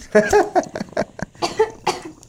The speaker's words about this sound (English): It's been a minute. Excuse me. No, I mean, coughing's a part of it, right? If you ain't choking, you ain't smoking, isn't that the same?